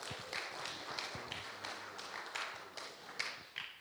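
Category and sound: crowd, audience round of applause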